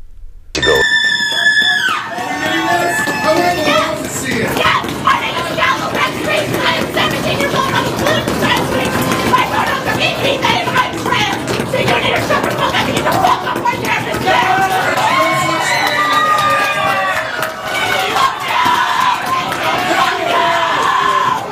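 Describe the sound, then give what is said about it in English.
A crowd screams and shouts continuously, a dense, loud wash of overlapping high-pitched yells and voices that never lets up, opening with a sharp piercing shriek. “Now it's going to be a little bit faint, so I'll try to crank it up a little bit, but there's a crowd involved, so it might get loud”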